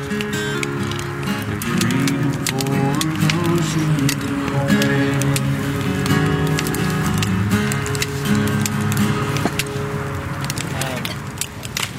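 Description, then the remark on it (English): A crackling fire snaps and pops irregularly throughout, its sharp little cracks steady and fairly loud, while a tour participant's voice talks over it the whole time. “Again, don't focus on the crackling fire, but on what's being said.”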